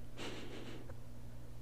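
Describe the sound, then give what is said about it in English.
A person sniffs sharply right into the microphone to see if it picks up the sound, a breathy burst of air lasting over half a second, then a tiny click and low steady hum with no talking. “Why did you sniff the microphone?”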